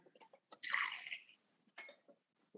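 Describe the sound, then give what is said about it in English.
A short splash of 1.5 ounces of applejack being poured into a cocktail shaker for a Jack Rose cocktail, fairly loud for about half a second, followed by a few small drips and clinks. “So I'm going to pour that into my cocktail shaker here.”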